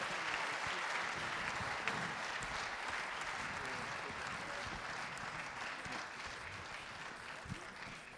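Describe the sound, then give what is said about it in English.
An audience applauds the people who made a documentary, a steady, dense wash of many hands clapping at an even level throughout, with a few scattered louder claps standing out and no voices speaking over it. “Een big round of applause, please, for all these people who worked so hard to make this beautiful documentary.”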